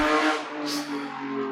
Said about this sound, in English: that's what I say every time I hear somebody drive by